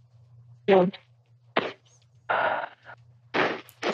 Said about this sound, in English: Oh no, I was just, it's just me blowing my nose.